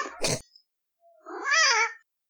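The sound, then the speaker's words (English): A brief rough burst of noise, then after a short pause a single drawn-out cat meow rising and falling in pitch, fairly loud, lasting about a second. “Time for the cat to talk.”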